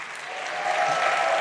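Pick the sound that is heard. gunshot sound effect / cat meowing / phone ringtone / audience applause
audience applause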